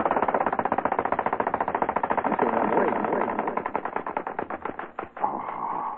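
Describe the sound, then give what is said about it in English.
A plastic toy flying bird, 16 inches across, running: its wings make a rapid, steady mechanical clatter of fast repeated clicks that slows and thins toward the end before a brief whirring hum. “And for those of you who would like one of these groovy little plastic birds that really fly, it's 16 inches across.”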